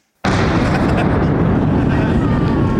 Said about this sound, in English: Did the cannon go off?